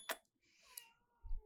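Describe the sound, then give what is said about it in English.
A soft, brief meow from one of several pet cats coming over, with a gently falling pitch, set between a sharp click at the start and a low thump at the end, with no one speaking. “All my kitties are coming.”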